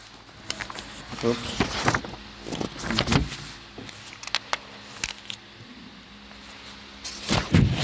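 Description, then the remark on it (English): A printer runs unevenly during a printing problem, its motor humming and whirring while sharp mechanical clicks, clunks and rattles break in at irregular moments, moderately loud. “There's a printing problem.”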